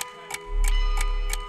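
A clock ticks steadily, four crisp ticks about a third of a second apart, joined midway by a deep, droning rumble underneath. No one speaks.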